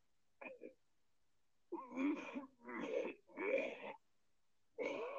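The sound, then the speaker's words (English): Someone is puking and retching: a short choked sound, then three strained, wheezy heaves in quick succession, with another beginning as it ends. Fairly loud, with no talking. “That was not coughing. That was puking.”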